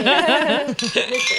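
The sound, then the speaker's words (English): Glasses clink together in a birthday toast, with a couple of bright ringing taps heard under several people cheering and laughing. “Well, on that note, thank you, …, for dredging that up on your birthday. Yay. Cheers!”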